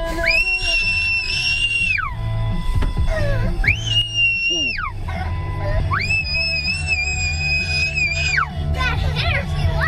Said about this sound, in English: Stay with this clip. I know it's grating to hear a child scream, but it's funny.